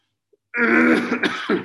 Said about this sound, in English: See, I'm sorry again for my coughing and everything.